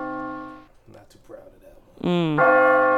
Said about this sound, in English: I'll just keep ringing this bell till you get to your bell.